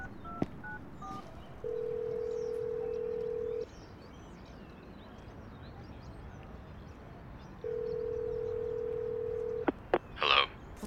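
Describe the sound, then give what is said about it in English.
A few quick dialing beeps at the start, then two long, steady telephone ringing tones separated by a pause of quiet line hiss, ending with a couple of clicks. No one speaks. “I need to make a phone call.”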